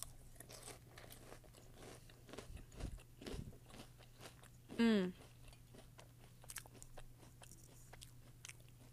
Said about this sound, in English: Meanwhile, I'm just eating my little cereal, so they're Cheerios, by the way.